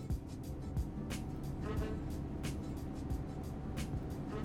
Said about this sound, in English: I am on a bus in New York City trying to get to the Staten Island Ferry, but I am somewhere above 125th Street.